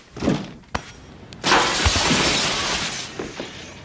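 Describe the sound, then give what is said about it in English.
A heavy thud and a sharp crack, then a man is thrown through a large plate glass window in a scene from the film Beverly Hills Cop. The window shatters in a loud, sustained crash of breaking glass, with shards clattering and tinkling for over a second before fading. “Yeah, when he gets thrown out of the plate glass window.”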